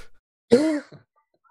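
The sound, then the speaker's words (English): A voice imitates a deep owl hoot: one short, gruff, throaty note, about a third of a second long, followed by a faint brief grunt, then silence. “The hoot is like the most masculine and deep, like bassy hoot you've ever heard.”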